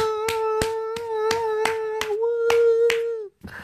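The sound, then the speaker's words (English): Hands clap in a steady, even rhythm, about nine sharp claps, over a continuous held tone that sounds like a sustained hum or sung note, ending in a brief pause and noise. “I wish I had a clapping machine now.”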